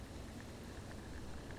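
Hydrophone recording by a field recording artist of limpets and periwinkles in a tide pool on the rocks: a steady wash of fine crackling with scattered tiny clicks and ticks over a soft low rumble, like faint fizzing, with no voices.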